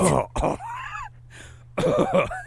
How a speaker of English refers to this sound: Sorry, my voice just... Something just coughed there.